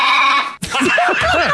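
Sheep bleating loudly, a steady bleat cut off abruptly and followed by several shorter, wavering bleats in quick succession, with no talking.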